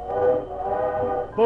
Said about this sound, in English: Train pulled out and Josh followed it down the tracks.